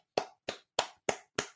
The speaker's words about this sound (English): What do you want me to do? You want me to give you a consolation clap? Oh, good job! You got a quarterback! Yay!